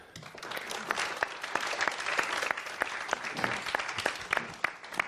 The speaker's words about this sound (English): I must say, I'm happy with the applause, with the fact that it's here. It does feel a little bit like it just came out of a lockdown, is getting used to being used.